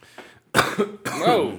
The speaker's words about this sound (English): Whoa. Wow. Cough into the mic. Yeah, phlegm attack. Yeah, wow. Sorry, people. Hope I don't do that again.